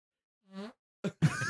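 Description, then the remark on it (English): A person blows a short, buzzy raspberry with the mouth that mimics a fart, followed by a brief breathy burst and then a louder, wetter sputter. “Let's all go around the room and do your best fart noise.”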